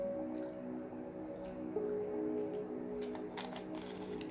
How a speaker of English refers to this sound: As I guzzle more water down